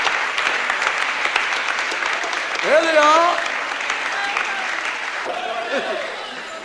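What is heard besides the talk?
audience applause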